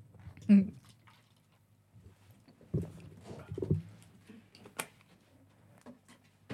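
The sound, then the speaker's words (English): Short splashy bursts of water being poured into a cup, fairly quiet, with a few drips and clinks in between and faint voices around them. “Oh, you poured some into your cup?”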